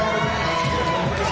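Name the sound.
crowd cheering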